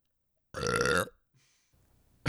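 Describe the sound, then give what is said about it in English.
A single loud, drawn-out, crisp burp lasting about half a second, followed by a brief quiet rustle and then another short loud burst at the end. “And if we're being perfectly honest, we got a really good recording of me burping right before we started this.”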